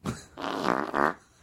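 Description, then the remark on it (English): A loud, wet-sounding fart rips out in a couple of sputtering bursts, buzzy and wavering in pitch, lasting just over a second with no talking over it. “Oh, even talk about farting.”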